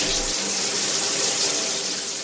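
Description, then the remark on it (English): Shower water runs in a steady, hissing rush, continuous for the whole stretch, with no voices or other sounds breaking through. “After I took a quick shower, I came back to the bedroom”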